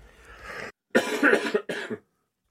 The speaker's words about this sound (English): Everyone can still hear you coughing.